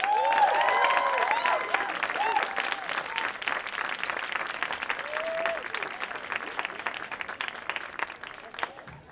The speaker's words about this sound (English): Apple presents Meet the Musician at the Apple Store. Please give a warm round of applause for our guest moderator, editor of self-titled magazine, Andrew Parks, and of course our guest this evening, composer, ….